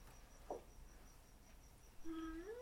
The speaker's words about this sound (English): I'm like, is that the cat making noise? Yep.